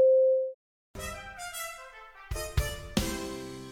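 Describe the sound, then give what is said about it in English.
A single steady mid-pitched electronic time signal beep on the Mutual Audio Network rings for about half a second, then after a short silence, bright orchestral music with brassy chords and swelling accents begins. “At the tone, the time will be 12 o'clock.”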